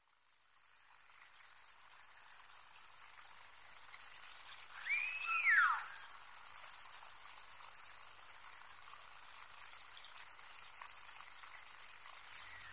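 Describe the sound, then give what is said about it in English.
A killer whale call from the West Coast Community killer whales, recorded in 2007 by a hydrophone towed behind the boat Silurian, rises and falls in a single arching, mid-pitched wail lasting about a second, set against a constant steady hiss with scattered clicks and crackles. “The sound you're currently hearing is a recording of the West Coast Community killer whales recorded in 2007.”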